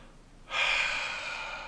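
A single long, heavy breath pushed right into the microphone in Washington, D.C., a loud rush of airy hiss that starts abruptly after a brief quiet moment and holds steady to the end.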